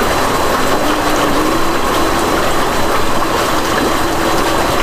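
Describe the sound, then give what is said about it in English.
Jets churn the water of a hot tub set up inside a tent, a steady, loud bubbling rush with a low mechanical pump hum underneath, continuous throughout; the tub water is at 103. “Got the bubbles going now.”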